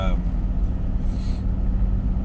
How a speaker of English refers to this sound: You'll hear the car noise, you'll hear the car brake occasionally because it likes to break down, because I'm driving what can only be described as the worst car in the world.